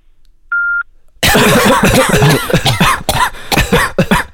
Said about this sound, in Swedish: så att om det är telefonsvarare så kan vi bara hosta. Ja, då hostar vi bara. Säger ingenting.